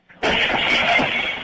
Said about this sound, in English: And the guy wanted us to break the window out, clear the glass out, and that's what we've done.